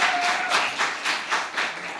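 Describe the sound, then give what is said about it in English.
Steady applause from a crowd, a dense wash of many hands clapping at once, swelling in soft waves for about two seconds with no voices over it. “I appreciate the applause because that was not a nice thing you said.”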